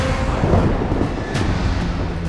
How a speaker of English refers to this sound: Dark storm clouds rumbled overhead, blocking any moon that might have lit his way.